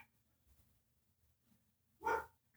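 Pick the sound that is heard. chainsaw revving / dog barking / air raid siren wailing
dog barking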